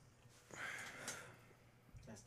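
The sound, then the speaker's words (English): Heavy breathing: a long, airy breath followed a moment later by another, loud, with a low background hum. “Bro, you breathing heavy over there.”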